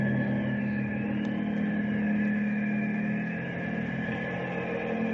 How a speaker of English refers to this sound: It is a plane. It sounds like it's coming right over us.